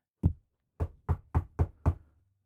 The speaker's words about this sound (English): Hello. It's Persia knocking.